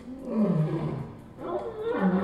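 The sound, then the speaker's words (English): A male lion roars twice in quick succession, deep and loud, each roar a rumbling, drawn-out bellow that swells and fades, with no talking. “Declaring themselves the protector with a roar heard for miles.”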